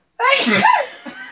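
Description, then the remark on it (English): A woman sneezes once, a loud, sharp burst, trailing into a brief breathy tail and a faint sound afterward. “Do you want to hear my girlfriend sneeze?”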